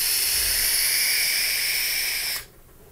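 A vape tank with a 0.54 ohm coil at 6.5 volts and 80 watts hisses steadily through a long, hard draw, an airy rush with a faint whistling edge that holds for over two seconds, then cuts off abruptly. No one speaks.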